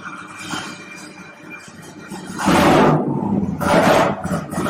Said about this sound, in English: Then I can come out here and get the engine started. So basically, I got the ignition on, I got fuel pressure. Let's see what happens. Here we go.